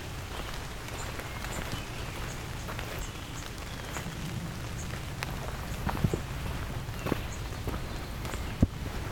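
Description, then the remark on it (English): Scattered drips of rain blowing off the trees patter irregularly onto leaves and ground under steady outdoor ambience, with a few sharper splats standing out near the end. “A bit of rain blowing off the trees here.”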